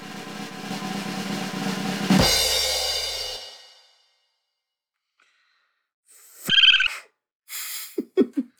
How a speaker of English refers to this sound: drum roll.